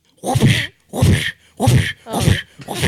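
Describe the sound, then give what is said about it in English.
A voice imitates whip cracks to count out a rating of 7.5 out of 10 for the film Indiana Jones and the Dial of Destiny, with a loud run of breathy, hissing bursts, five in quick succession at a steady rhythm with short gaps between. “I'm going to give it 7 whips, 7.5 whips out of 10 whips.”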